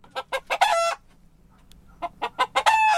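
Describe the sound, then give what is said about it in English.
A hen clucks in two clear bouts, each a quick run of three short clucks rising into a longer drawn-out squawk, with a brief quiet gap between them. “It's a hen.”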